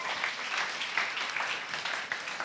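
A crowd applauds steadily, many hands clapping in a dense, continuous patter that holds an even loudness throughout, with no voices standing out.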